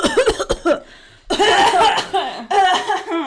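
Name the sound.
imitated hacking cough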